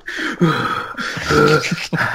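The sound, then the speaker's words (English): A voice imitates heavy breathing into a phone in three breathy, voiced bursts, fairly loud with brief pauses between them, with no clear words. “Like, there's a minute of this show, it's just the two of them heavy breathing into phones at each other.”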